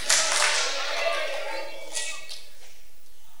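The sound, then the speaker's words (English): A crowd slaps hands in a quick scattered burst that quickly tapers off, followed by a couple of isolated slaps and a faint murmur of voices; audience members are slapping themselves a high five. “Some of you didn't say it, you just slapped yourself.”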